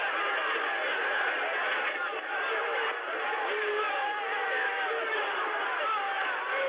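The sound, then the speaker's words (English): A crowd of hundreds of rioters in Washington, D.C. shouts continuously as it overpowers a police line and rushes forward on several fronts, a dense roar of many overlapping voices with occasional louder individual yells rising above the steady din, never letting up. “And now hundreds of rioters rush forward on several fronts.”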